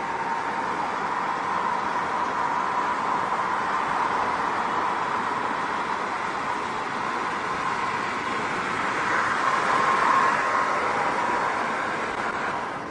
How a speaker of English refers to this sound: Rush hour here in Dallas, Texas. It's about 5:30 in the afternoon. People going home. Traffic moves pretty slow.